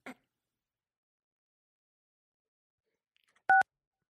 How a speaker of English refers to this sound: Oh, what is going on? What? You're dialing the phone. How did I do that?